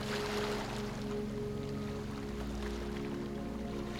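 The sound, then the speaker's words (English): Steady ocean water washing continuously with no breaks, carrying a low droning hum underneath, like waves heard from aboard a boat. No voices. “Allow for any discomfort to dissolve as you enjoy the waves.”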